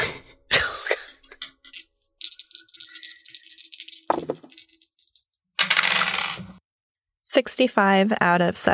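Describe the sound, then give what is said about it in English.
Dice clatter and rattle across a hard surface in several separate bursts, fairly loud, as several people roll dice, with a throat clear or cough and a voice briefly talking near the end. “Everyone just roll a dex.”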